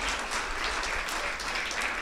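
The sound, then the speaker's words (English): An audience claps steadily, a dense, even wash of many hands at a constant loudness throughout, with no voices standing out. “You can give them a hand. You can clap for them.”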